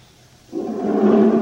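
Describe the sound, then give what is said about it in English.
After a brief quiet moment, a deep, rumbling sheepdog growl on the moors starts abruptly and swells steadily louder, holding a low, rough, throaty tone to the end with no voices over it. “It's a sheepdog or something.”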